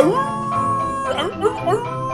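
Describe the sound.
A person's voice imitates a wolf howl, a long sustained tone that slides upward, then wavers through a few rising swoops. It is fairly loud, with no other sounds.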